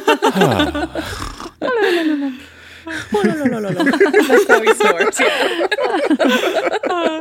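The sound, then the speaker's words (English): A voice imitates snoring with low, throaty, gurgling snorts and drawn-out rumbling breaths, rising and falling in pitch over several seconds, followed by bursts of laughter. “That's how he snores.”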